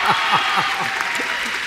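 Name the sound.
audience applause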